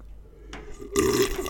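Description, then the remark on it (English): Drinking sounds as someone drinks plain water: a brief wet gulp, then a louder, rougher stretch of swallowing and throaty gulping, with no talking. “I only drink regular water. Here, we can get some ASMR of that right now.”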